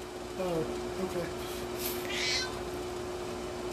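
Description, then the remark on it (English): A male cat that has just woken up meows twice in quick succession as he walks right by the microphone, followed by a brief rustling hiss over a steady low hum. “He likes to walk right by the mic and yell, just so everybody knows he's here.”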